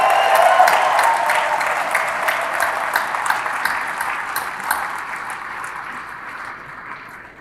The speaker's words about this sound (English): Let's give him a big round of applause one more time.